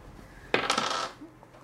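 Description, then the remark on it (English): Physical dice clatter across a hard tabletop in a quick burst of rattling impacts, fairly loud, settling after about half a second with no voices. “My physical first, dice? First time actually rolling dice here.”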